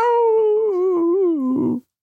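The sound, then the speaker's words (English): Three voices imitate a howl together in unison, a loud, sustained tone that wavers and slowly falls in pitch for almost two seconds before breaking into a brief raspy finish and stopping. “Everyone do your best howl.”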